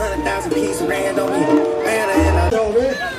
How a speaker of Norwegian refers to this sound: Folkens, gi dem litt applaus.